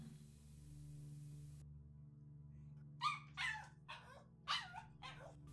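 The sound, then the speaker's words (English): A dog barks five or six times in a rapid, uneven burst inside a house, greeting a woman as she comes in, after a few seconds of low background hum. The barks are sharp and loud. “Then the barking dog greeted her inside, as loud as he could be.”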